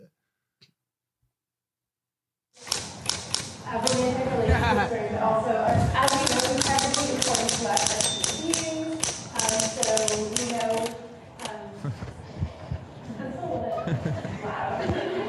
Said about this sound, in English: They brought a typewriter into a college lecture hall.